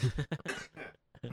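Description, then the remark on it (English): A person coughs repeatedly: a quick run of short, rough bursts, a longer raspy cough, then a brief pause before another cough begins. The coughs are loud and clear, with no talking. “You gotta cough. Just let it cough.”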